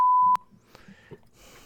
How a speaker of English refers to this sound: What, did you pick up your phone? Why the dial tone play?